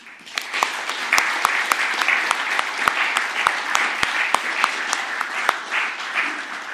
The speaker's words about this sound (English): But let's just give a big clap to all the leaders and helpers.